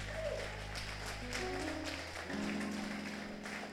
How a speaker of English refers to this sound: Your clapping is having malaria. Clap like you don't want Ebola to come to Ghana. Clap if you don't want Ebola to come to Ghana.